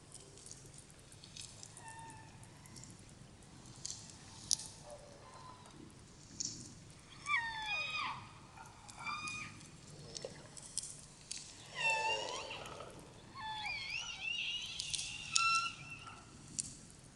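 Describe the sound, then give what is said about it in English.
Orca calls and whistles of L pod (Elpod) orcas, whose family calls are unique to their bloodline: a series of rising and falling squealing tones with layered harmonics, interspersed with brief clicking, heard alone over a low steady hiss. “Like other orca around the world, members of Elpod emit a complex system of calls, clicks, and whistles that are unique to their family bloodline.”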